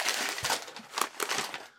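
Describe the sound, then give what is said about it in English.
Christmas gift wrapping paper crinkles and rustles in a quick series of sharp, scratchy bursts as a gift from the Bobby Kudo Show is torn and pulled open. No one speaks. “Open that up for me, guys. Tell me what you think on that. See if we can get this in the mic. Get that. Cool paper, right?”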